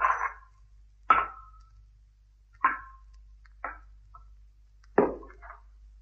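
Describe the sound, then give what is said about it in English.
A loose rock fragment from just inside the edge of a circular pit falls and strikes repeatedly, making five sharp, hollow knocks spaced about a second apart, each with a brief ringing decay, ending in a final watery plop as it reaches water in the pit. No one speaks. “There's a loose fragment of rock just inside the edge. If only I can dislodge it.”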